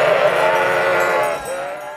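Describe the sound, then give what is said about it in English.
A flock of sheep charges out through gates opened by herders, a dense, loud wash of overlapping bleats and scuffling movement that stays busy, easing slightly toward the end. “And out charge the sheep, who know exactly what direction to head in.”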